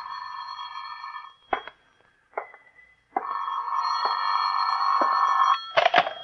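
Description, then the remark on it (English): A telephone rings in an office in long, steady bursts with brief gaps and clicks between them, clear, with no one speaking over it. “Phone's ringing, Johnny.”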